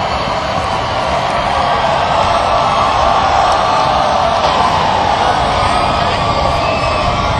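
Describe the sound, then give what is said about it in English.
A large concert crowd roars and cheers as the band comes on stage, a steady, dense wash of noise with scattered shouts and whoops rising from the mass. The loud din holds unbroken throughout. “Well, the crowd's getting anxious here.”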